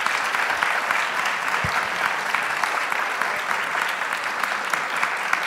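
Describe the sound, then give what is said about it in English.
A room full of people claps steadily for several seconds to thank the two speakers of the evening, a dense, even wash of applause with no voices rising above it. “Please join me in applause now.”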